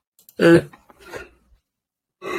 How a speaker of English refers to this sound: Can we get a yawn counter for …? That's one.